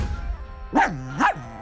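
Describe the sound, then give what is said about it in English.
A dog gives two sharp, fairly loud barks about half a second apart, with only faint background noise around them and no talking. “Presto change-o. Mosquito, be a dog.”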